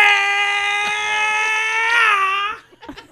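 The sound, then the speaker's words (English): A single kung fu yell rings out loud, one long, strained high-pitched cry held for over two seconds, wavering slightly before cutting off into a few faint scuffs. “I said Mr. Scream, not Mr. Kung Fu.”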